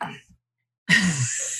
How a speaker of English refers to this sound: So I say soothers and I need to cough.